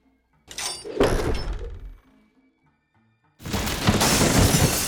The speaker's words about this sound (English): A sharp whir and a creaking thud puncture the outer stillness as a huge catapult of the ancients hurls its missile from a cypress swamp.